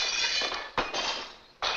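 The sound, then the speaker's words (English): A house window pane shatters from a rock thrown by a woman: two sharp crashes with bright tinkling glass spraying and settling between them, loud and with no voices. “She throws it and breaks the glass.”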